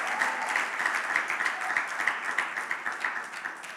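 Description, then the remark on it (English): A church audience gives the Lord a clap offering, clapping steadily for several seconds, a dense, continuous patter of many hands with a fairly even loudness and no voices standing out. “If you want to say amen and give the Lord a clap, just give the Lord a clap offering.”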